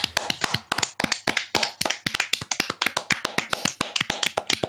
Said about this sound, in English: In fact, can we all give it a round of applause?